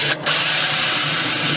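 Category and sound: tool, power drill running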